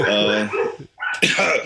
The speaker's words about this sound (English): Shut up, dog.